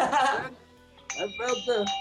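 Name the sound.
small bell ringing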